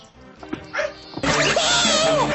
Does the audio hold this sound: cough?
no